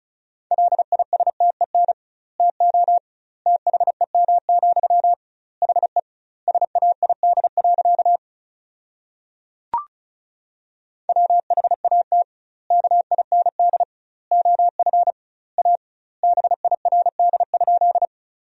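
A fast, steady stream of Morse code beeps at 35 words per minute on a single mid-pitched tone, sending sentences built from the 400 most common words, grouped into quick bursts with double-length gaps between words and a brief click near the middle. No voices.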